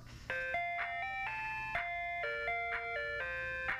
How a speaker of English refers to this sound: It was an ice cream truck. I ran to the window to see if it had stopped outside, but it was gone. I thought it was great that an ice cream man would come down my street this late at night.